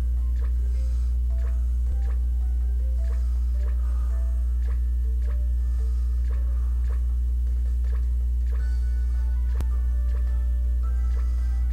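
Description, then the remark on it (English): Soft, rhythmic chewing sounds of Snorlax, a steady run of small crunchy clicks and squishes repeating about every second, over a constant low hum, with no one speaking. “Now I can hear Snorlax chew on again.”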